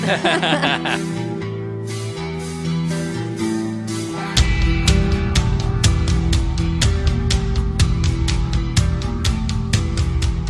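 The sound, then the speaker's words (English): A heavy metal song, heard as Mariano Rivera's entrance music when coming out to close out a game, opens with ringing guitar, then a loud, thumping bass and pounding drums kick in about four seconds later, driving a steady, regular beat with no voices. “Just that thumping bass.”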